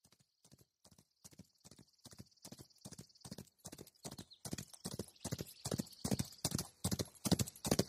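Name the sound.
horses' hooves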